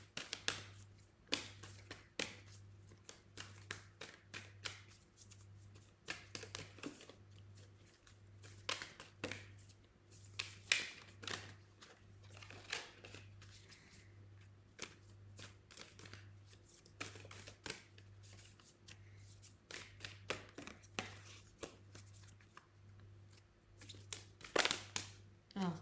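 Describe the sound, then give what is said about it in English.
A deck of cards being shuffled, with repeated quick riffles and soft card snaps over about half a minute. A low, steady hum runs underneath throughout. “I'm gonna shuffle them again because I feel like there's one more card, but I don't know why.”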